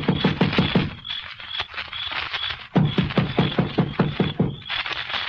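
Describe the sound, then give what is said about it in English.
Rapid, sharp knocks on a door come in several insistent bursts with brief pauses between them, loud and sustained for several seconds, with no voices. “You gonna knock? Of course.”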